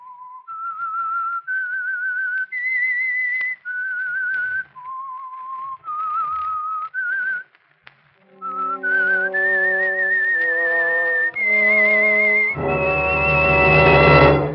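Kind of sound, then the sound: sound effect, whistled theme melody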